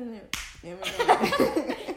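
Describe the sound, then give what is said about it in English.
A brief vocal sound comes first, then a sharp slap and a quick run of loud hand slaps tapping out a rough beat, with a voice mixed in. “I guess they were trying to, like, also the beat that they did barely matched it. Like, it was just kind of like...”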